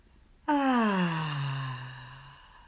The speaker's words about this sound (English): Breathe in and out. Breathe in and out.